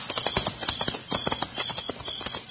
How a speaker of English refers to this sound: Okay, I'm on my way. Quiet, mate. Come on, horse.